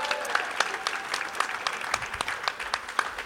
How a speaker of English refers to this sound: Come on up. Round of applause.